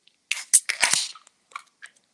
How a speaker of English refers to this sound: Let's raise our glasses or our cans, crack them open, and say cheers.